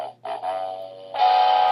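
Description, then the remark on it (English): A short musical jingle for the Dum Dum Award plays on its own: sustained bright, bell-like tones hold steady, then the sound swells louder and fuller for its final stretch. No one speaks. “We haven't given one of those yet, and we're an hour and 4 minutes into the show, so go ahead, cue that Dum Dum music, shall we?”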